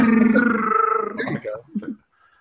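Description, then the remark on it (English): A voice imitates a man gargling before bed, sounding like a Wookiee roar: a loud, drawn-out, raspy moaning growl that breaks into a few choppy, gargling sputters before stopping abruptly. “You can hear him gargling before he goes to bed, and it sounds just like a Wookiee.”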